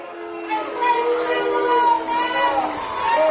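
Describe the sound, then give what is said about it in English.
A home crowd at a football game reacts to an illegal receiver downfield penalty called against Lakeland, a sustained, fairly loud swell of many mingled voices, holding steady for a few seconds with overlapping tones rising and falling throughout. “The home crowd not liking this.”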